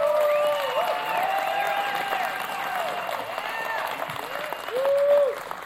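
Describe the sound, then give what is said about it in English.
An audience claps steadily for the Lord in a dense, continuous wash of applause, with high voices whooping and calling out over the clapping, swelling louder again near the end. “You need to give the Lord a real hand clap.”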